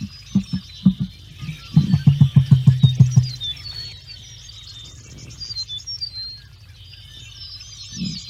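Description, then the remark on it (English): Small birds chirp and twitter steadily in the background throughout, while a deep, low pulsing call repeats in rapid bursts in the foreground during the first few seconds. “Not the little bird calls in the back, but the deep sound, deep and low.”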